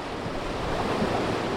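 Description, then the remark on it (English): A steady, loud roar of rushing whitewater rapids on the Upper Kern River in the Southern Sierra as a rafting boat launches into the river, the churning rapids continuous with no voices or breaks. “Almost as soon as we launch our boat into the river, the directions start coming, and they cascade as swift as the water.”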